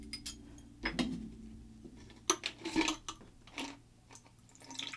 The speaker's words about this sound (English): So this has a bit of melt in it, so I'm just going to pour the water out.